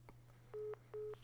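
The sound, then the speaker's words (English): Two short, identical telephone switching beeps signal an incoming call, in quick succession, each about a fifth of a second, sounding clear over a steady low electrical hum on the line. “Hey, I'm getting a phone call. You mind holding for just a sec?”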